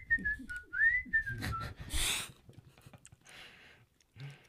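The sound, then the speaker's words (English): A person imitates someone's tuneless morning whistle, a short, wandering phrase sliding up and down in pitch, followed by breathy noises and a brief hiss. “And with a whistle. No tune, no familiar tune, just a...”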